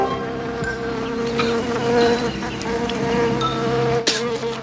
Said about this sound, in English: you still hear him flying when you see this dead bee coming out of Rick DeCoven's mouth